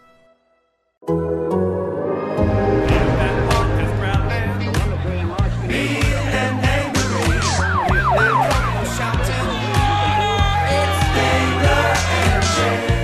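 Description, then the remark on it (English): An opening alarm track made for the show: wailing emergency sirens and alarms rise and fall over a loud, driving musical beat with heavy bass, the siren sweeps most prominent midway through before a steady high tone lingers. “Sound the alarm from our alarms from the … who made that for us.”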